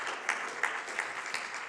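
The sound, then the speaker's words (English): A church audience applauds a large one-day offering of cash, stock and property, a dense, steady wash of many hands clapping at moderate volume, with sharper claps standing out at a regular pulse. No voices are heard. “Cash, stock, property, yeah, that's something to cheer about right there, yeah.”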